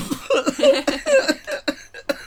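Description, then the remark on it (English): A loud coughing fit: a rapid string of harsh, rasping coughs, about eight bursts in two seconds, barely pausing between them. “You cough, you get off, man.”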